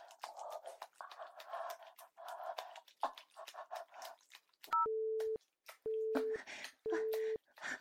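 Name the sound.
phone call failing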